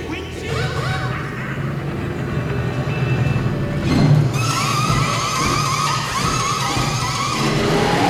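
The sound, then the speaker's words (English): A busy pit stop scene from the movie Cars, with race car engines droning and revving steadily, a loud whoosh around the middle as a car rushes past, and clattering, skidding bursts throughout, with no one talking. “It is from the movie Cars, and you can see what a pit stop looks like.”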